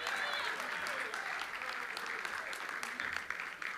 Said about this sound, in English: Will you give the Lord a clap offering of praise? Come on, how many ears going to do it? Let's do it.